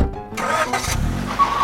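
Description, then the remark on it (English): A car engine cranks and turns over, then settles into a low, steady rumble with a brief rev as the vehicle begins pulling away, heading back to Brooklyn. No voices. “Time for me to sit in 3 hours of traffic while I head back to Brooklyn.”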